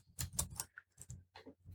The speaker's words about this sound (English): That's so loud. Everybody's like, oh my God, typey. Sorry, I'm typing relaxants. I spelled it wrong. I spelled relaxants.